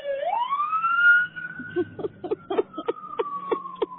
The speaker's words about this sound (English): Yeah. We got a fire truck coming by, so hang on.